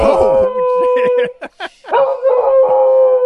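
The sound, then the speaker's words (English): A dog howls in long, wavering tones, fairly loud, pausing briefly in the middle with a few short yips before launching into another sustained howl. “brought to you by Mahler, the dog that keeps on giving”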